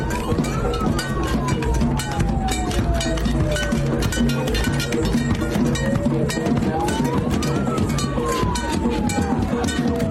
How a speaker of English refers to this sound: Many people had pans and spoons that they were hitting, and the guy with the mask on has a bullhorn with a siren. I'm gonna stop talking for a second so you can hear how loud it was.